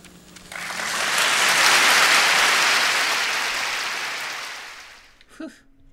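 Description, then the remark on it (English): A crowd breaks into sustained applause after an on-stage speech, clapping to drown out booing, swelling to a loud, dense roar of many hands clapping before gradually fading out after several seconds. “But more people clapped to shut up the booers, and that was encouraging.”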